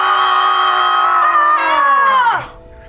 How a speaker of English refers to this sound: I'm nervous about this. Can we actually really scream? Yeah, it's far enough away. Really give it to us.